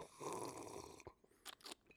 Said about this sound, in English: I'm drinking some Blanton's right now, and boy, is it delicious. I'm just going to take a sip. Excuse me.